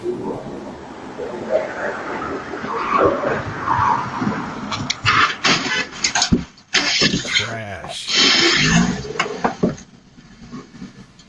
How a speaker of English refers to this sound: And then the Audi just backs up, turns around, and continues on his merry way. Total hit and run.